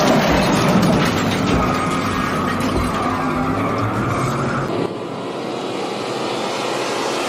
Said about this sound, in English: We were hit by that car from behind. You ran off the road, and after that, I don't know what happened.